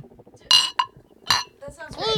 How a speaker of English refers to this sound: We got to do a cheers. A toast. A toast. Cheers. Let's. Two. Do a clink in front of the mic.